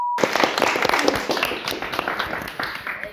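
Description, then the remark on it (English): A brief tone blip, then a crowd bursting into steady, dense applause, many hands clapping at once in a loud, even wash that holds for about three seconds. “Let's give a round of applause for me.”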